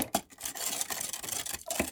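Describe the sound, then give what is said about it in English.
Gritty scraping and grinding of a muddler pressing sugar, bitters and rye whiskey against the bottom of a glass to dissolve the sugar and mix them, a steady run of raspy strokes with a few sharper taps, no voices. “Now you take your muddler and muddle the sugar and the bitters and the rye together.”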